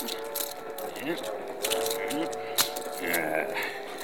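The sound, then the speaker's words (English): A few brief metallic clinks and a key-jangling rattle, like handcuffs being unlocked, sit beneath a murmuring voice, with one sharper click standing out near the middle. “Let me get my keys.”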